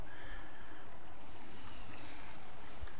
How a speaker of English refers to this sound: And all I hear is the brook.